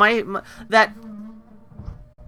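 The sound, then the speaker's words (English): A steady, buzzing motor hum drones at a low, even pitch from a housemate vacuuming in the background, with a couple of brief louder swells near the start. “I think your people are vacuuming.”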